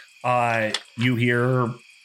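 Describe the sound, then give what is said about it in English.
A human voice imitates crickets chirping at night, making two drawn-out, buzzy calls in quick succession, fairly loud, with nothing else in the background. “You hear lots and lots and lots of crickets, and that's about it.”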